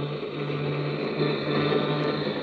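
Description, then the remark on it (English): A train that was boarded in Chicago speeds along the tracks into the night in a steady, unbroken roar, with a low droning hum beneath broad rushing noise and no voices. “As the train speeds on into the night, you wonder what's in the package Judith has placed in your care.”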